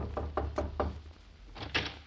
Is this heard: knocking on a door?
yes